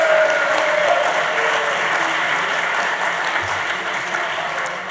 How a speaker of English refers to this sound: Everyone, a big round of applause, Tom Cruise.